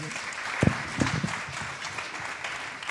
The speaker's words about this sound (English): You can clap now. There you go.